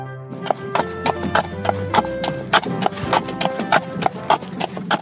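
Horse hooves clip-clop in a steady, brisk rhythm as a horse pulls a carriage on an evening drive, each hoof strike sharp and distinct, with a faint continuous hum running underneath throughout.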